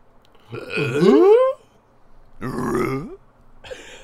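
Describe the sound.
A person voices a throaty, rasping growl in three bursts: a long first one sliding upward in pitch, a shorter second, then a brief third that gets cut off.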